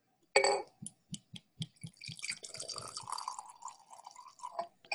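Bourbon glugs out of a bottle in a quick series of hollow, rhythmic pulses, about eight of them, then settles into a steady splashing pour into a glass.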